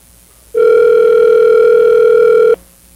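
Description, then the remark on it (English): A telephone dial tone heard while placing a call to the show's gadget guru: one steady, loud electronic hum, mid-pitched with faint buzzy overtones, holding unbroken for about two seconds before cutting off abruptly. No one speaks. “Let's give him a call.”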